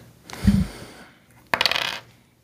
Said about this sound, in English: Oh, I'll do the dice roll again, but it will be track six for those listening at home.